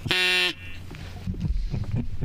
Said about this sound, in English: I know you haven't done this in a while, so just so you know, I will ask a question, and then while you answer, if you go over 25 seconds, I will blow this duck whistle, like so.